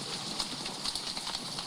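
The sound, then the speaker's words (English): Steady trickling water, a soft continuous hiss broken by small irregular splashes and drips, fairly quiet, with no voices. “I hear water.”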